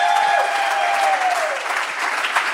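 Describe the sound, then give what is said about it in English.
Sustained applause from a crowd at Cornerstone Church in Atlanta during a live show recording, a dense steady wash of clapping that stays loud throughout, with a faint whistle-like tone sliding downward over it. “So can we give it up for Cornerstone Church?”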